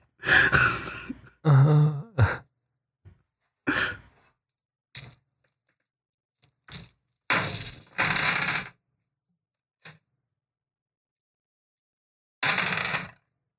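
Dice are rolled in a game, rattling and clattering across a hard surface in a series of irregular bursts, some brief taps and some longer rolling rattles, separated by quiet pauses, with no voices; two land on blank sides.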